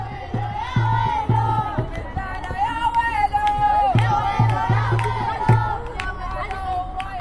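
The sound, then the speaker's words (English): A crowd of family and friends cheers and shouts continuously at an outdoor women's college soccer match in Riyadh, Saudi Arabia, with overlapping voices and a fan banging a metal drum in short bursts beneath the noise. “On the sidelines, family and friends sit on white plastic lawn chairs, cheering on the teams.”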